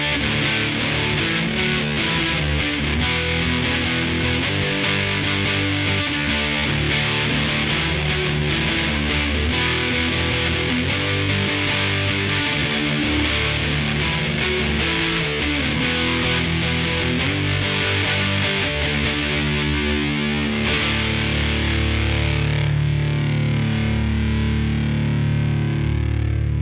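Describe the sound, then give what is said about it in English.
A distorted electric guitar, a Stratocaster played into a Little King fuzz pedal with the Storm pedal bypassed and a Universal Audio Delver in the background, plays a continuous, gritty passage of thick, sustained chords and notes, loud and steady throughout with no voices, its tone shifting slightly near the end. “Now, this is a Stratocaster again into the Storm, this first example bypassed, into the Little King.”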